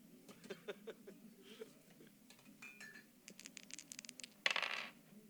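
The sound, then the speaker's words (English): Dice clatter on a hard tabletop, a scattered run of small clicks and taps building to a denser rattling burst near the end, fairly quiet, with no voices. “Hey, they're rolling dice in the sirens.”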